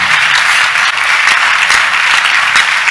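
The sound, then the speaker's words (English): A crowd claps loudly and steadily for the Lord, a dense wash of many hands overlapping into continuous applause with a few sharper individual claps standing out, and no talking. “Give the Lord mighty clap of it.”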